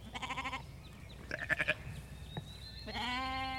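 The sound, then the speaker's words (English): Several sheep in a paddock bleat in turn, wavering, quavering calls with short pauses between them, the last one long and steady, heard over a low outdoor rumble with no talking. “it'll be loud enough, the sheep calling, that we can't hear each other”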